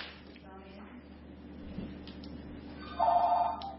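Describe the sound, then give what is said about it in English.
A telephone rings with a short, bright electronic trill near the end, clearly louder than the faint background murmur and room noise that come before it. “Wait, she got the phone.”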